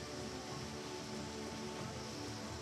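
nature, rain falling

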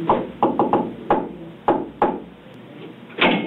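impact, knocking

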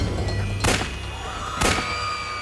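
sound effect, two gunshots

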